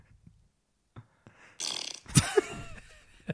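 A recorded fart sound effect, a track from a 2009 album: a few faint pops, then a loud, raspy blast of about two seconds with sputtering, squeaky bursts, heard alone with no talking.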